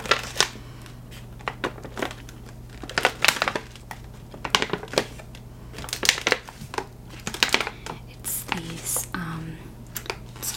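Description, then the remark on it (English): A package of S'mores Bark Crisps, a Favorite Day snack bought at Target, crinkles and crackles in irregular bursts of sharp, papery rustling, some louder flurries among quieter handling, over a steady low hum, with no talking. “Chatty, Crinkles, Page Flippin”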